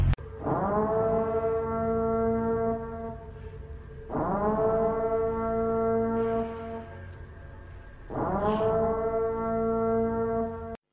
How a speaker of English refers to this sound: Emergency broadcast system announcing the commencement of the annual purge sanctioned by the U.S. government. Commencing at the siren, any and all crime, including murder, will be legal for 12 continuous hours.